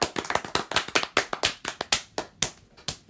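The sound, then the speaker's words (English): Three people clapping hands in a quick, uneven patter of sharp, bright claps, about twenty in three seconds, overlapping enough to sound like more people than a few, with no voices. “But why does it sound like 50 people were clapping?”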